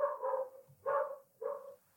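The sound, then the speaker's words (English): Three drawn-out dog barks in a slow sequence, muffled, from dogs outdoors in Bushwick, with no one talking. “The dogs of Bushwick are barking.”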